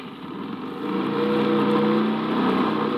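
A car engine revs, its pitch climbing and its volume swelling as the car accelerates away to get back on the road. The engine drone fills the whole moment, with no talking.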